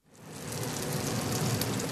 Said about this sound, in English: flips a yellow square-shaped chunk of cornbread in a pan sizzling with melted butter.